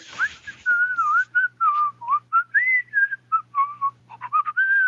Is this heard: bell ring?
no